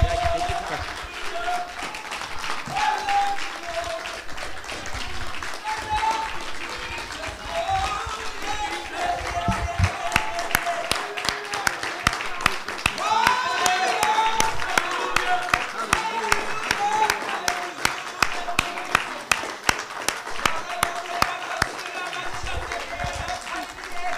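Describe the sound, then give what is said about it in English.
An audience claps its hands for the Lord in an evening service, about twenty seconds of loud, dense patter of many hands that settles into a steadier, rhythmic beat in the second half, with crowd voices mixed in. “Will you give a great hand clap unto the Lord tonight?”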